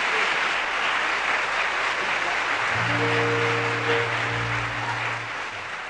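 A crowd claps and cheers in a dense, steady wash for the whole stretch, while a low sustained instrumental tone rings out beneath it for a couple of seconds midway.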